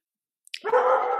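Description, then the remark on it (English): A dog lets out a sudden, drawn-out bark, loud and harmonic, after a brief click and moment of silence; no one speaks. “Not mine. Usually my dog.”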